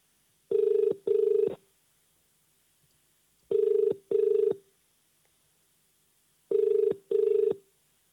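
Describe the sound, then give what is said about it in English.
A telephone ringing tone repeats in steady double bursts, ring-ring, three times with pauses between, clear and alone with no one answering or speaking. “Still ringing.”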